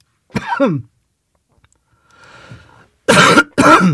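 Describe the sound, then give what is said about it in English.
A brief throaty noise and a soft breath, then two loud coughs in quick succession, with no talking. “Excuse me, guys, I'm coughing again.”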